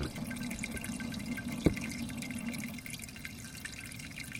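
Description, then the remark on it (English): Liquid drains from a bag of brewing grains, just pulled and held in the air over a colander, in a steady, soft trickle, with one sharper drip standing out partway through. No one speaks. “Let's see if we can do the usual, do you hear the grains draining thing here?”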